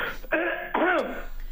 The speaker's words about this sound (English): let me clear my throat real quick.